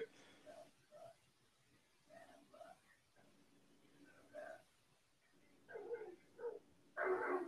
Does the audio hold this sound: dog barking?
yes